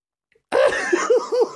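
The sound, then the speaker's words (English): After a short silence, loud coughing erupts into a quick run of rough, guttural throat noises, repeating in choppy, rhythmic bursts. “It was like YouTube poop of … coughing and like making guttural throat that, noise.”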